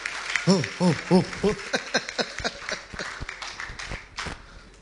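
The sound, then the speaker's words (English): An audience claps to celebrate a student, in scattered, irregular bursts, starting under a few raised, sing-song voices and then continuing as loose, uneven applause that thins out toward the end. “Keep clapping.”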